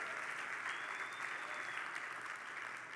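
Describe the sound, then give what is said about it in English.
A church audience applauds together during a service, a dense, steady wash of clapping from many hands that holds at an even level throughout, with a faint murmur of voices beneath. “Why don't we give the people here today a clap for being here in the house of the Lord tonight?”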